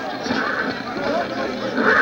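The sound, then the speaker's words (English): A horse whinnies within a dense, continuous wash of commotion as a team of horses pulls a fire engine to a fire in Manchester, England, in 1826; the sound is fairly loud throughout and rises slightly toward the end. “A team of horses pulling the fire engine of the Norwich Union Boys Firehouse.”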